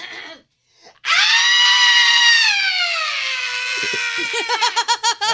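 A person lets out a long, loud, high-pitched scream lasting about four seconds, starting abruptly after a short pause, the pitch sliding slightly down before it breaks into shaky, warbling bursts at the end.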